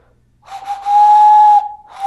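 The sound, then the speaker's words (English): A breathy whistle blown through cupped hands, a person imitating a steam train: one long, loud, steady hoot, a brief pause, then a second blast starting. No talking. “It's like a train. Yeah. Like a choo-choo train.”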